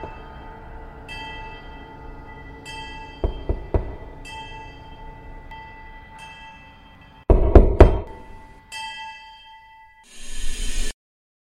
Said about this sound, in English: Apologies, some cunt setting off fireworks on the 10th of fucking April.